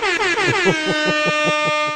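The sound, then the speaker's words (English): A loud, blaring horn sound effect holds one steady, brassy tone for about two seconds, rich in buzzing harmonics, with a rapid pulsing flutter running through it and no voices. “Toot your own horn.”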